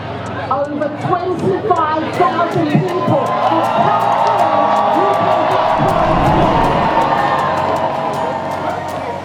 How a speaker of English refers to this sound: where she introduces all of the volunteers and the crowd just screams, you know, and cheers us on.